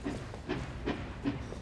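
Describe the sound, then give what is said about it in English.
A train pulling out of a station rolls along with a steady, rhythmic clack of wheels over rail joints, roughly every half second, over a continuous low rumble and faint hiss. No voices. “I stood on the platform as the train whistled and lurched from the station.”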